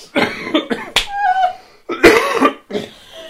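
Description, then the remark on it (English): A person coughs repeatedly, a run of loud, harsh bursts with brief pauses between them, including one sharp hack and a longer, rougher fit, with no talking. “I've been holding back my cough, so there you go.”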